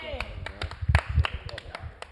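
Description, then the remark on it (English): A few people clap in quick, uneven bursts of sharp slaps, with a voice briefly audible at the start and faint talk underneath. “Clap for her.”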